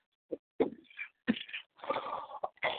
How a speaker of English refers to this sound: Little old cough. Man, don't die. Not on air. Don't die.